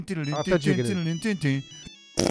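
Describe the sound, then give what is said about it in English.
A voice sings a short, bright ringtone-style melody, imitating a mobile phone ringing, followed by a held tone and an abrupt burst of noise at the end. “I always think when you're bloody getting chased by the axe-wielding homicidal maniac, turn your phone on silent.”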